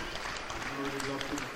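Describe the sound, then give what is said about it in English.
Home fans applaud the penalty takers as they come off the pitch, a dense, continuous wash of clapping, with a voice faintly audible beneath the noise. “As the penalty takers have come off the pitch there, a good round of applause from the home fans.”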